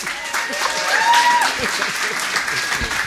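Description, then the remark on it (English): A crowd applauds a speaker being introduced, clapping steadily for about three seconds, a dense, even patter of many hands, with a few faint cheers or whoops rising above it. “So please give it up for an amazing talent, incredibly smart guy, and awesome deconstructionist”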